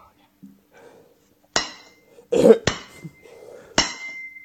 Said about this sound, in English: If you had a man getting hit in the testicles with a little bat, you are the winner. The end, the little noise he makes at the end is so fucking funny. He literally goes, oh.